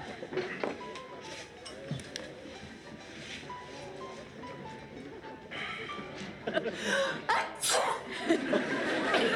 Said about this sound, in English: God bless you. Thank you. Thank you very much.